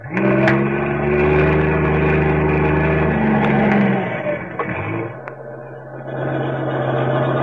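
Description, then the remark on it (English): A heavy trailer truck engine roars loudly and steadily in a deep, labouring drone as it climbs a steep highway at night, then its pitch drops and it grinds on with a rougher rumble, without any voices. “Suddenly, the silence of the night is broken by the roar of a trailer truck climbing the steep highway.”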